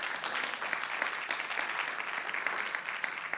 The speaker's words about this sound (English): I think that deserves a better clap, actually.